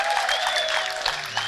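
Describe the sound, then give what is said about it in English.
A burst of audience clapping, dense and steady across the whole moment, with many hands blending into a continuous bright patter and a few faint cheers mixed in. “That's my biggest clap.”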